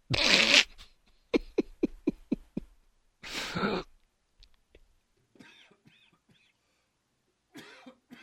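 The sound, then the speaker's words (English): A harsh, loud cough opens, followed by a quick string of about seven short, choppy coughs and another heavy hack, then quieter breathy throat sounds trail off. No one talks. “I'm coughing and you're not talking.”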